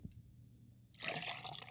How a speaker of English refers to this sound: Then, pour it all in a shaker full of ice.